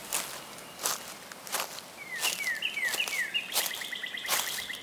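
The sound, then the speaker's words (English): Birds sing a series of quick, repeated descending chirps in the trees, while footsteps crunch steadily along a dirt forest trail during a hike. “On the other side of the leaves, the dirt path returns, and we continue walking, listening to the birds.”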